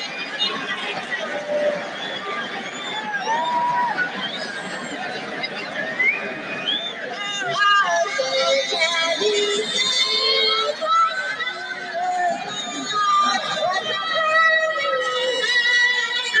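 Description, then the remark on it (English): A large crowd at a Major League game in San Diego boos a singer's performance loudly and steadily, many voices overlapping in a dense, sustained jeer that swells midway and keeps going without a break. “They're booing her because of what she's doing.”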